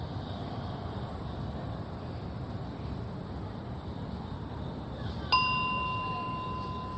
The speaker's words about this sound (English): I got this bell not because I think bells are special, but I got it because it felt really weird to just say, now our meditation is over. So I had to get something.